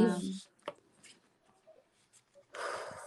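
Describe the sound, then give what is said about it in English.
A deck of cards being shuffled: a few short papery flicks, then a longer riffling burst near the end, after a brief bit of talking at the start. “Anyway, I'm shuffling as I'm speaking.”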